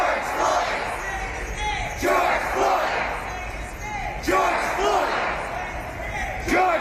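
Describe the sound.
A large crowd of protesters in New York chants "George Floyd" in unison on the anniversary of the abolition of slavery, loud shouted voices rising in a steady rhythm with strong surges roughly every two seconds over a constant murmur of crowd noise.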